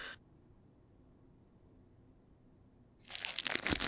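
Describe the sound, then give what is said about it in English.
After a brief rustle and about three seconds of near silence, a brownie wrapper crinkles loudly open, a bright, dense crackle of plastic with no voices. “Nice crinkle sound. Yeah, I'm just opening a brownie.”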